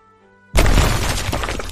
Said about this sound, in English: Wow, that explosion was awesome.